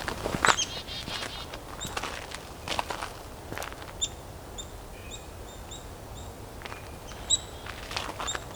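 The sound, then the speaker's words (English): Footsteps crunch steadily through leaves while a mixed flock of chickadees, nuthatches and blue jays calls, with a creaky blue jay call in the distance among short, repeated high chirps and nasal notes, and a white-breasted nuthatch calling, all fairly faint. “That kind of creak in the distance is a blue jay.”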